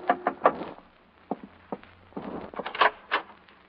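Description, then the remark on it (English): A quick cluster of knocks on a hotel room door, then a few scattered raps and thumps with faint rustling between them, moderately loud, with no voices. “I was in my hotel room packing when a knock on the door changed my mind again.”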